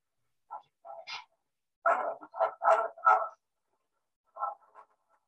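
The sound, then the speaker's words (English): A young woman, about twenty, growls in rough, dog-like bursts in a recording: two short snarls, then a run of four harsh growls close together, and a quieter pair near the end, with silence between and no speech. “You can just see she's like growling the whole time.”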